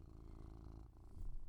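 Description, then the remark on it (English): A cat purrs close to the microphone, a steady low rumbling with a rhythmic pulse that continues throughout, fairly loud and intimate, with no talking. “Is the kitty getting picked up on the mic?”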